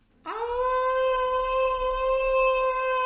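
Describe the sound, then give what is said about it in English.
A man lets out one long, loud scream, a held high-pitched cry that swoops up at the start and then stays steady for nearly three seconds, with no other talking, as he rides a bike down a street at increasing speed, about 60 miles an hour, unable to see. “As I screamed going down the street at increasing speeds, doing the front wheel about 60 miles an hour, and I couldn't see.”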